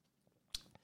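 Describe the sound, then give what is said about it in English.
A quick, quiet sip of water: a soft wet slurp followed by a fainter second mouth sound, with no talking. “Hold on, let me get a sip of water.”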